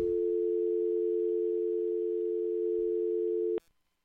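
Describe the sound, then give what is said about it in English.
A steady, continuous telephone tone, heard after dialing a number, hums loudly for about three and a half seconds, then cuts off abruptly with a brief click, leaving near silence. “Wonder if I dialed all the numbers.”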